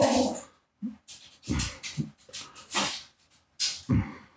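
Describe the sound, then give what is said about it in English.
Two dogs, one part pit bull, play-fighting, making short whimpering and huffing sounds in a series of quick bursts, with snorts and breathy yelps, no one talking. “Sorry, we're we're commentating on the dogs.”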